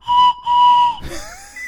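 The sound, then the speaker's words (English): A plastic 3D-printed whistle blown in two loud, shrill blasts with a brief gap, followed by a wavering, sliding whistle tone as the sound tails off. No one speaks. “by a plastic 3D whistle?”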